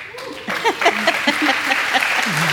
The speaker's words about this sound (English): Y'all are applauding for me reading that long passage, right?